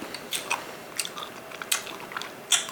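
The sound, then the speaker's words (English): Chewing of sticky, slightly crunchy spicy candy in mango and watermelon flavors, with a series of irregular wet, clicky bites and smacks over quiet background, no talking. “Give it a good chew, too.”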